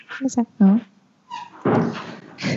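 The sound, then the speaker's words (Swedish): A door or cupboard creaks with a few short, squeaky, tonal groans, followed by a broader scraping rush as it swings, then a brief final squeak. “Den gnisslar lite där.”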